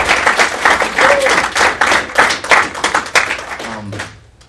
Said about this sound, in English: And we're going to stop right there, and we're going to applaud that, because that is amazing.